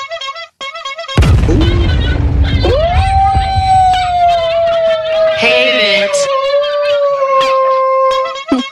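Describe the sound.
A loud dog howl stretches out in one long wavering tone over several seconds, mixed with short yips and whines, after a sudden noisy burst at the start. A voice briefly speaks.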